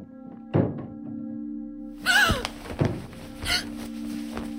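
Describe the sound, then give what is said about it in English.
A door slams three times in the night, heavy booming thuds spaced unevenly over a low steady hum, one bang followed by a brief rattling creak. “Sometime in the night, Janie and I were jolted awake by the door slamming 3 times.”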